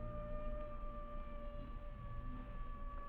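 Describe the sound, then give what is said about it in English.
Coyotes howling at night: a long, sustained wailing tone that holds a nearly steady pitch for several seconds over a low, rumbling background, with no voices. “Sure wish those dad-burned coyotes didn't sound so much like human beings.”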